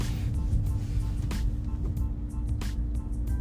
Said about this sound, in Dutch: Nee, ik wacht al even, want er komt een grote vrachtwagen aan.